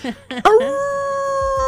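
A dog lets out a couple of short yelps, then rises into one long, steady, wolf-like howl that holds loud until the end.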